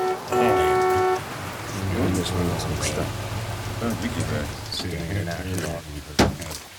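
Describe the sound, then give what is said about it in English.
Steady rain hisses in the background under muffled voices, with a brief tonal sound at the start and a sharp knock near the end. “Standing in the rain waiting for that a-hole.”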